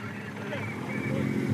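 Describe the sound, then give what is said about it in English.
A convoy of team cars following a cycling race peloton approaches along a gravel road in Tuscany, a steady engine rumble growing gradually louder over a second or so, with a faint voice murmuring beneath it. “And as the peloton approaches me and the convoy of team cars snakes down the road, sending up plumes of white dust floating across the Tuscan landscape,”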